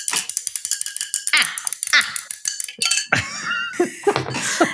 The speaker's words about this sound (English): That's loud. Stop stirring your tea, bitch.